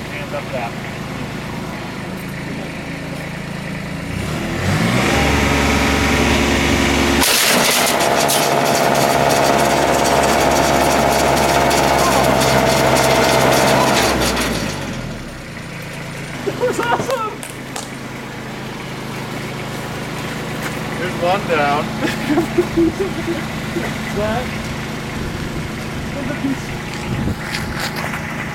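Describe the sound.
A snowblower engine roars loudly for about ten seconds with a steady, rattling drone as a Naruto shuriken is thrown into it, then cuts off. People talk afterward over a low background hum.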